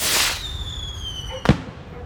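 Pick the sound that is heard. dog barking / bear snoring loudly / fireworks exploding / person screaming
fireworks exploding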